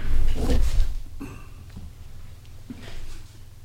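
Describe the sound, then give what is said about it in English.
A chair back being adjusted: a rustling shuffle followed by a few soft clunks and creaks spread over a few seconds, with a low rumble underneath and no talking. “See if I can get this chair back going again.”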